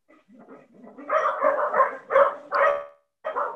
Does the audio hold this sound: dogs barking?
yes